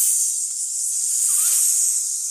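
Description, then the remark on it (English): A steady, sharp hiss lasting about two seconds, a voice drawing out a snake-like "psst". It's fairly loud, with no talking around it. “"That snake," he said to Eve. "Psst," he said.”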